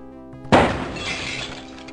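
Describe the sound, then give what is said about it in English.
In an Indiana Jones video game intro, the Raiders March plays, then window glass suddenly shatters in one loud crash as Indy swings in through a window, followed by a bright, crackling spray of falling shards that fades over about a second beneath the music. “Indy then swings in through a window.”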